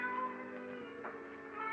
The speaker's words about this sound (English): Suddenly, the silence was broken by the faint crying of a cat.